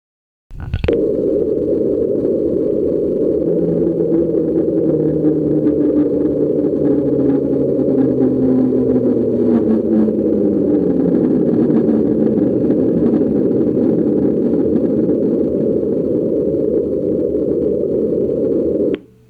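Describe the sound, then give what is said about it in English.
Hydrophone recording of the mysterious ocean sound known as the slowdown: a dense, unbroken low rumble of underwater noise, with a faint humming tone sliding slowly downward in pitch through the first half before fading into the steady wash. “That same year, hydrophones picked up the slowdown sound.”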